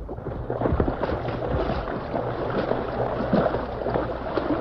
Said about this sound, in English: Careful, Tonto. The water's mighty fast. Plenty deep, too. Yes, up to my hips.